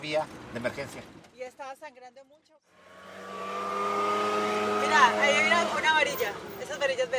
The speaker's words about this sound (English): By around 2 p.m., we keep driving around in his truck.